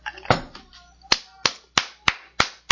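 A clap sound effect: about seven sharp, crisp claps in a steady, slightly quickening rhythm, each one a bright smack that fades quickly, with faint murmuring at the very start.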